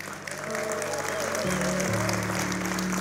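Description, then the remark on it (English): A church audience claps steadily for a few seconds for the Sunday altar teams, a dense, even wash of applause, with sustained organ or keyboard tones ringing underneath. “How many of you guys are thankful for our Sunday altar teams? Yeah, let's give a clap.”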